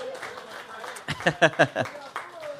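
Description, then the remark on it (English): A short burst of audience applause for a guest thanked for joining them on stage, a quick run of sharp claps lasting about a second, set against background voices and murmur. “So give him a cheer, folks.”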